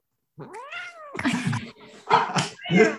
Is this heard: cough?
no